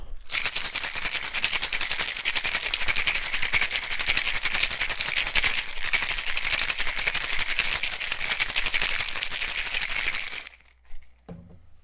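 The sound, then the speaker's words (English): Ice rattles hard inside a cocktail shaker as a drink is being made, in a fast, steady rhythm for about ten seconds, loud, then stops abruptly, leaving a couple of faint clinks. “Now, for my, besides the part of drinking the drink, this is my favorite part of making the drink, is shaking it.”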